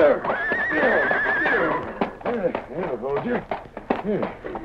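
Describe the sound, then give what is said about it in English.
A horse named Silver neighs loudly in a long, quavering whinny, followed by excited snorts and shorter whinnies, agitated, with some hoof clatter underneath. “Not so fast, horse.”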